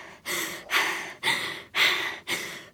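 Rapid, heavy breathing from someone waking from a nightmare on a school morning, five or six loud, airy breaths in quick succession with a gasping, panting rhythm and brief pauses between them. No one speaks.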